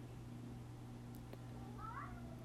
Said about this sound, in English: Cat, shut the fuck up. Shut up.